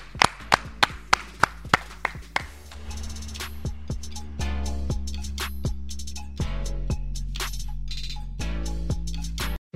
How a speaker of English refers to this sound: Clap it up. Clap it up.